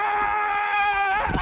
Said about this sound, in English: So a lot of football fans noticed that Colts offensive lineman Quentin Nelson loves to scream right before he hits someone. So listen to this.